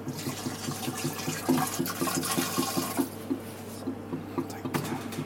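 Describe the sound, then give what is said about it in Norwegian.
Water pours steadily into a jug holding purple cleaning fluid for pipes, with a rushing, splashing hiss that fades after a few seconds, and a voice murmurs underneath. “Ja, og så etterfyller vi med vann. Og så litt vann. Ja, den fyller. Masse vann.”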